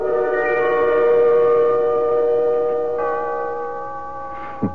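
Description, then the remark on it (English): A faulty clock chime goes off for the second time that morning, ringing with sustained, layered tones that hold steady and fairly loud, shifting slightly partway through, then ends with a brief sliding blip. No one speaks. “I want to fool around with the works and see if I can get it going and figure out what goes with the chime.”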